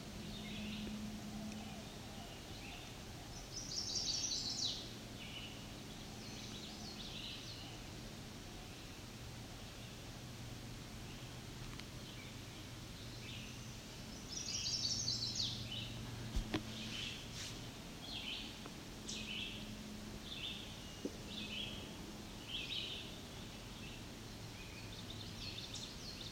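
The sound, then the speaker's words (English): A male chestnut-sided warbler sings two brief, bright phrases roughly ten seconds apart over a steady hiss of background noise, with faint chips and scattered high notes between. “That's a chestnut-sided warbler. There he is again.”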